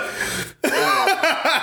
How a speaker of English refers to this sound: yo, that nigga will hold his breath and wait to cough on you.